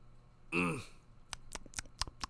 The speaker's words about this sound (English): Hear that? That's me chewing on that.